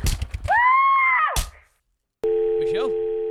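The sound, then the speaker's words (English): A short burst of voice cuts off abruptly as a phone call disconnects, and after a brief silence a steady, loud busy tone begins, holding unbroken to the end. “we lost her. Not as in she's dead, just on the phone.”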